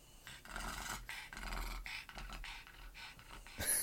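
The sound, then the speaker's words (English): A female dog pants and gasps in quick, rhythmic breaths, with a few rough, throaty rasps mixed in and no one talking. “I'd rather hear that licking is so bad. Than hear her, you know, the gasping.”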